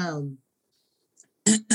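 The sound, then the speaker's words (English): A throat clearing: two short, rough bursts in quick succession, moderately loud, following a brief falling vocal sound and a moment of silence. “I clear my throat.”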